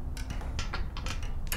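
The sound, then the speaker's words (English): A church tower clock mechanism ticks and clanks, a series of sharp metallic clicks at uneven intervals over a low, steady mechanical hum, in a small, square, sun-filled tower room with massive glass clock faces on each side, the winding mechanisms taking up the entire room. No one speaks. “In the middle of the room sat the clock itself.”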